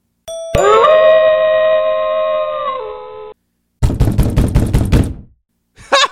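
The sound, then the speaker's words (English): A doorbell rings with a sustained, ringing two-note chime, then after a short pause comes a loud flurry of rapid knocking on a door, with a brief extra burst of knocks at the end. “Just a minute there. Be right there. Whoever's at my door.”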